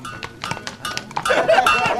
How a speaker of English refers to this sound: The sound of men's voices and the clatter of hooves coming down the street, you know, another horse was on its way. People warning me to stay out of the way.